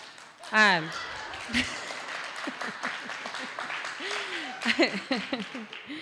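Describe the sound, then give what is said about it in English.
An audience claps in a dense, steady patter, with scattered whoops and voices calling out over the applause. “It's okay not to clap at everything.”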